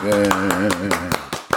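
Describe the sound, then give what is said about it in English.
A short burst of steady, rhythmic clapping, about eight sharp claps in quick succession, with a sustained wavering voice holding a tone underneath. “We need an applause then.”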